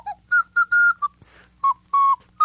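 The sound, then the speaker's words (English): A flute plays a short run of about seven clear, breathy notes, some clipped short and others held, mostly at a similar mid-high pitch, with brief gaps and a soft airy rush between them. “Yeah, I like the flute.”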